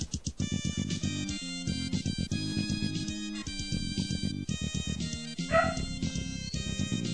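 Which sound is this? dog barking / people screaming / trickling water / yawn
dog barking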